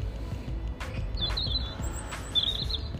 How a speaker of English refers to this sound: Okay, so the robin is now sitting on a low branch, singing directly to me, as if to say, you need to pay more attention to what I'm trying to tell you.